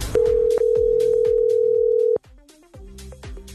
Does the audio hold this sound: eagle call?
no